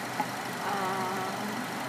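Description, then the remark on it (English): A steady, low engine hum like a car idling, continuous and fairly even throughout with a faint tonal drone and no voices. “Should my car be off or on?”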